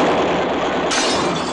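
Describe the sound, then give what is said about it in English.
A loud, sustained crash of glass shattering, a dense burst of breaking and scattering shards that carries on for over a second, with no voices. “Your cheek is bleeding, Mark. Yeah, broken glass.”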